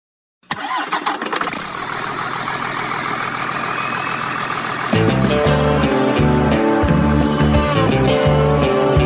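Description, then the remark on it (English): A big truck engine cranks to life and settles into a loud, steady rumbling idle, with music kicking in over the engine about halfway through. “Let's go for a ride in this big old truck.”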